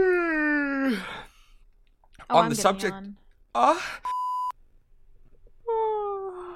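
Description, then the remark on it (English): A long, drawn-out voiced yawn sliding downward in pitch, followed by breathy vocal noises, a brief electronic beep, and another groaning exhale near the end. “I'm in the middle of a yawn.”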